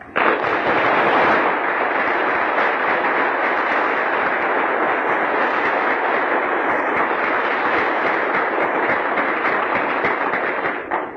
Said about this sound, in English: I would like them to stand, and I would like our congregation to express a hand of applause for the great leadership and faith that these people have given to us.